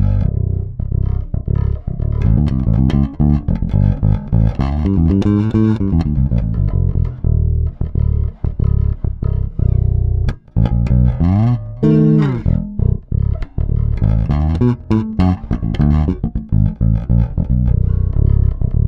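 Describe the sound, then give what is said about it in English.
A solo electric jazz bass with its mid-range boosted plays a busy, steady line of plucked notes with a punchy, mid-forward tone, loud and continuous throughout, with deep low notes from its low B underneath and no talking. “Sometimes if I feel like I'm not cutting in the mix enough, I definitely boost that mid-range.”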